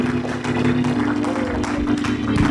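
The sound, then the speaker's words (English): An audience at a church sermon claps steadily and loudly, a dense wash of many hands over a sustained low musical drone, with voices mixed into the noise. “Come on, give God a clap play.”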